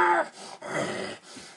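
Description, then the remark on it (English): A voice imitates a growl: a breathy, raspy rumble in three short bursts over about a second and a half, moderately loud and wavering, with no words spoken. “Oh my, he scares me so much I can't even do my growl right.”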